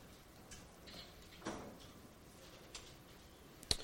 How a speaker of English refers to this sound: It's lovely to hear some pages turning.